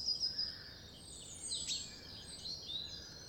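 Faint birdsong: thin, high chirps and short trills scattered across a steady outdoor hiss, with no one speaking.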